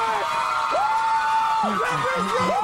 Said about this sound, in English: The crowd loves it.